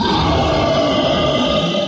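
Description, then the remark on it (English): A loud, sustained creature roar from the darkness of a warehouse, deep and rough with a gritty, growling texture, holding steady for about two seconds with no voices around it. “A stomach-churning roar came from the darkness of the warehouse.”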